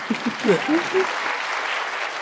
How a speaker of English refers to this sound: Yeah, it's okay to clap.